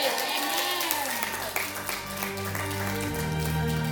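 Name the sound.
audience clapping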